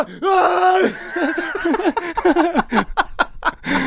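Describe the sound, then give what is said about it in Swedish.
A voice lets out an exaggerated, drawn-out wail of pain, then breaks into a string of choppy, strained cries and groans. It is loud, a comic imitation of a basketball screaming each time it is slammed against the ground. “Och varje gång man slår den mot marken. Ja, så skriker den.”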